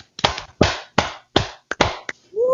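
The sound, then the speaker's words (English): A brief round of applause from just a couple of people applauding themselves for the films they did this year: about seven loud, sharp claps in an uneven rhythm, with a voice starting up right as the clapping ends. “Round of applause to us.”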